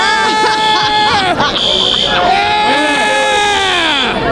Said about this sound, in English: At one point, the fire alarm went off, and … started yelling.